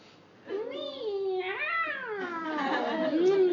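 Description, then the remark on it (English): A human voice imitates a cat with long, wavering meows, pitch sliding up and down, fairly loud, running almost continuously for about three seconds after a brief quiet start. “It had never tasted such lovely cream in its life. Meow, meow.”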